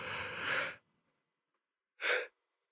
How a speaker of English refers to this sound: I'm sorry, I'm yawning. It's 1:33 in the morning right now. Everybody's asleep except for me. I've been up since 6:30 this morning.